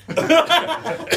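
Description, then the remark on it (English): A person imitates a dog coughing with a quick run of four rough, throaty voiced bursts, moderately loud, sounding partly like stifled laughter. “Oh, yeah, they were fine, but there's like 15, 20 minutes where they couldn't stop coughing.”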